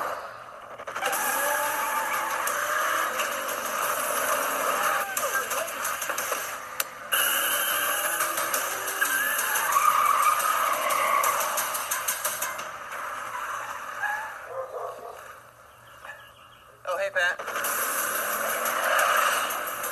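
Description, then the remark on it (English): Stock cars in a NASCAR race roar by in a loud, continuous wash of engine noise, with tires skidding and squealing in brief bursts, a short lull near the end before the racing noise surges back. “So now, women in NASCAR, the women who make America's highest form of stock car racing go.”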